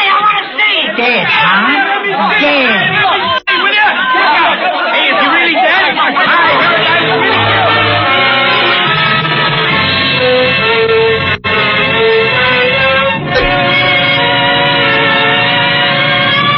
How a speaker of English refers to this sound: And deep in the cavern, the lament of hurtling steel, the crowd. The crowd watching on the platform. No variation here. Same crowd that gathers and watches of all death public performances. The crowd.